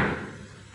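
A door in a hotel being shut with a single solid thud, its low, booming resonance fading away over the next moment, with no voices.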